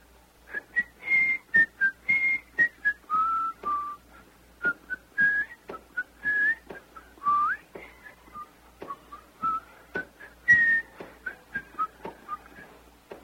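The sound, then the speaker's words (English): Marching band members out in hot sunlight whistle a lively melody of short, clear notes in a bouncy rhythm with brief pauses, fairly loud, with no talking. “And they're out there in that hot sunlight whistling, you know.”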